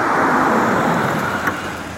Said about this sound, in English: And no sooner can I think through what the hell is going on than this car pulls up.